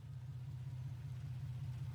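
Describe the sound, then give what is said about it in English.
A tow truck from Jerry's Garage, its name in bright blue letters on the door, rumbles steadily at low pitch, a continuous droning idle with a faint pulsing throb, unchanging over the two seconds, with no voices. “And then I hear the tow truck.”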